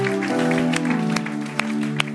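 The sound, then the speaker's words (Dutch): Steady audience applause for first-time visitors, a dense patter of clapping with a few sharper claps standing out, under sustained low musical tones. No one speaks. “Why don't we give these guys a hand? Geef ze echt een applaus.”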